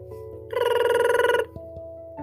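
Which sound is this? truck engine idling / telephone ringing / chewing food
telephone ringing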